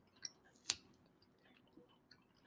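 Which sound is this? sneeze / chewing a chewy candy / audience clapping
chewing a chewy candy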